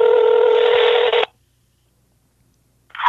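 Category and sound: signal or alarm, telephone dialing tones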